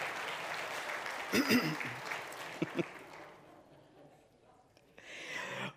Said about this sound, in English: Ladies and gentlemen, listen, big round of applause for all that.